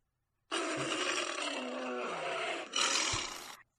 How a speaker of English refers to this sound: Tiger! It's a tiger!